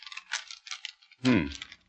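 Crisp paper crackles in a quick run of short rustles as a letter on excellent quality paper is handed to Mr. Holmes and unfolded, ending with one louder, fuller rustle before fading out.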